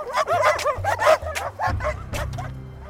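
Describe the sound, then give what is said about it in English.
Several dogs bark and yip in rapid, overlapping bursts, some yelps high and whiny, with a low rumbling hum running underneath the whole time. The dogs surround a person walking past small wooden houses. “I'd never been fully surrounded like this or feeling trapped by dogs.”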